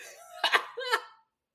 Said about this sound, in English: It's actually making me cough.